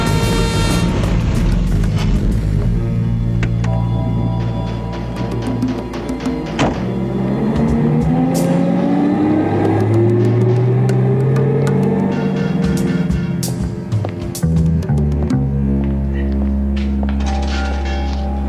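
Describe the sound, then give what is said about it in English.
A car engine revs up and down in a busy car chop shop, its pitch climbing and falling over a steady roar, with scattered metallic clanks and thuds. “So it's the next day, Tuesday, October 26th at 9:30 in the morning, and he goes to talk to a car chop shop guy named Johnny Parisi.”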